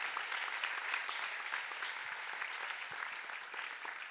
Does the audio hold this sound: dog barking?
no